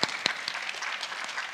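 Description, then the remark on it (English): An audience breaks into applause, a dense patter of many hands clapping at a steady, moderate level with a few sharper claps standing out near the start. “We got to give a round of applause for that, please.”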